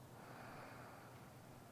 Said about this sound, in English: So let's breathe in again. Ribs expand, and then exhaling all the way.